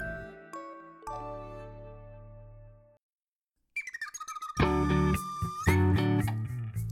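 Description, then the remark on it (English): A clock chimes with three quick ringing strikes that sustain and slowly fade, followed by a brief silence and then a louder burst of bright, busy tones. “Did you hear that? Clock, it chimes.”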